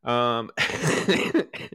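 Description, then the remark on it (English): A person getting over a cough gives a hoarse, voiced throat clearing, then a short run of rough, raspy coughs and hacking, fairly loud, with no talking. “So excuse me, y'all. I am getting over a cough, and this is disgusting.”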